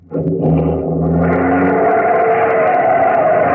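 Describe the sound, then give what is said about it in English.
A taxi engine revs hard and the taxi accelerates away fast, its loud whine climbing in pitch before settling into a steady roar of motor and road noise, with no talking. “Driver, start going. I don't care where, only make it fast.”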